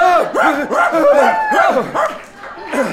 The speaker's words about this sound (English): He's screaming himself awake again.